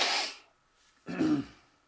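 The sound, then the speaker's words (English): A brief breathy rush of air, then after a short pause a low, rough, voiced burp lasting about half a second, made away from the microphone after drinking beers, somewhat muffled and heard on its own without talk. “Excuse me, I am about to burp, but I am not going to do it into the microphone.”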